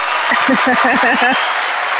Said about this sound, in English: Do you have a cheering sound effect that you can throw in there? Or can we get another applause? No, here we go.